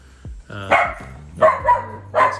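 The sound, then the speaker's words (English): A dog, Doom Dog, barks three times in short, spaced bursts, fairly loud, with a low hum underneath and no talking. “That's Doom Dog in the background.”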